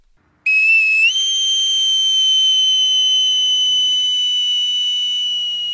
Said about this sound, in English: That's when he heard it, a high-pitched whistle.